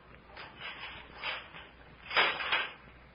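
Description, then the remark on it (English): The heavy door of a great bare stone room in the ruins of an ancient Khmer city is unchained and opened: a few soft rattling scrapes build into a louder, rough grinding sweep near the end, with no voices. “And then the door was unchained and opened.”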